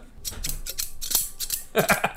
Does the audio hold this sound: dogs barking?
no